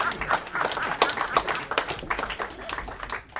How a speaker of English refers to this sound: a big round of applause, please? Yeah.